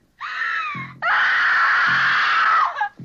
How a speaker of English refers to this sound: One ear-piercing scream and one last burst of agony in defiance of the parasite inside of her, and she dies.